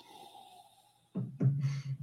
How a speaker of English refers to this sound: Every time I sniff a scotch these days, I always think of Richard Patterson saying, "I'll kill you."